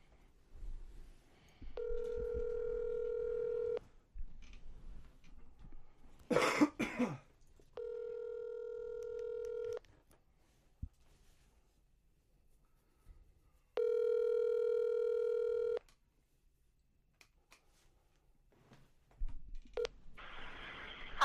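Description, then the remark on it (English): A phone call rings out unanswered and goes through to voicemail, with three long, steady electronic ring tones separated by pauses, a cough breaking in between the first two, then a short burst of noise at the end. “Moms always pick up on the first ring.”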